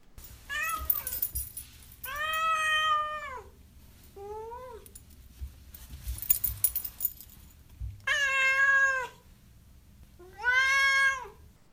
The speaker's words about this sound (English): Now, of course, is the time for Duarte's Corner when we ask my cat Duarte his opinion.